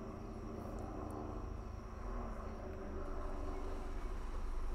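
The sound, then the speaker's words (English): A helicopter drones steadily overhead above a city, its engine and rotor noise filling the scene and growing slightly louder toward the end, with no voices present. “Oh no, it's a helicopter in our city.”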